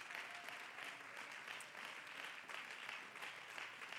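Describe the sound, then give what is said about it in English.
A church audience claps steadily in praise of the Lord, a dense wash of many hands applauding together for several seconds, with no one speaking over it. “Church family, would you give the Lord a great big hand clap of praise?”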